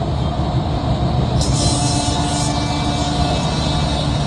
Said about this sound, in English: Who the hell's honking?